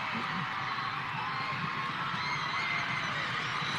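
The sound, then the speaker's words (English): A steady roar of crowd noise fills a basketball arena during free throws with Liberty leading 12-4, with low, thudding stomps of the crowd pulsing irregularly underneath the broad hiss of the spectators. “You can hear the stomping of the crowd.”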